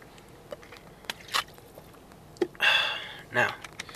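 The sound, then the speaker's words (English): Someone takes a drink of water: a couple of quick wet slurps and swallows, with small clicks and faint mouth noises around them, otherwise quiet. “So before I do that, I'm going to take a little bit of water, because, you know, you got to stay hydrated and all that shit.”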